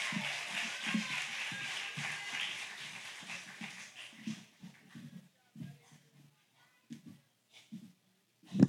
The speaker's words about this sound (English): Give him a great big round of applause.